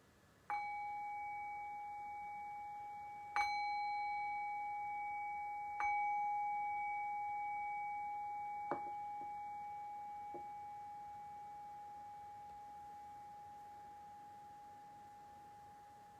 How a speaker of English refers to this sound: And so in the next breath or two, we'll begin to move away from the meditation practice and back into a conversational space. And I'll cue that by ringing the bell 3 times.